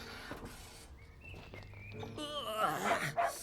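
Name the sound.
dog barking and whimpering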